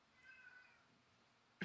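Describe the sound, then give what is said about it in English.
A single short meow from a male cat, fairly faint, cut off by a brief sharp noise at the very end; the cat yells while its owner records. “He just thinks I'm talking to him the whole time I record, so he just yells the whole time.”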